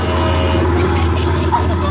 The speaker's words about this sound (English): A bunch of oil trucks coming through. You better get out of the way.